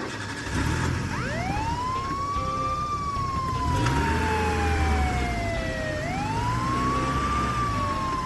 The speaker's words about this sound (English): Just go! And hit the siren, baby!